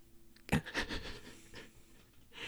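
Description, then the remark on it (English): A voice imitates heavy, wheezy breathing into the microphone, like Homer Simpson breathing next to Frank Grimes: a burst of loud panting followed by softer, raspy exhales, with no words spoken. “I'm thinking of Homer Simpson breathing next to Frank Grimes.”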